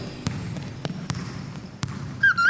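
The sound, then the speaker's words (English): A basketball bounces on a hard floor, four sharp, uneven thuds over a low rumble, followed by a couple of high-pitched sneaker squeaks at the end. “Oh, I know! It's a basketball.”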